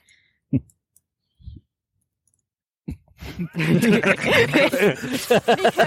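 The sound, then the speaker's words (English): A few soft, scattered thumps give way to a loud, rapid burst of clicking and clattering, like furious keyboard typing, mixed with vocal sounds as the game's DM seems to imitate the frantic typing. “furious DM typing noises.”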